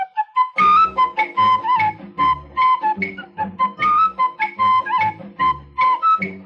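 A bright, bouncy jingle tune is whistled over a lively band backing, the melody hopping through short repeated phrases for several seconds with a steady, danceable beat underneath.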